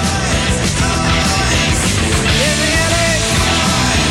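A loud, dense heavy blues rock chorus plays continuously, heavy guitars and drums driving it, with muffled shouted vocals, not in time, buried low in the mix.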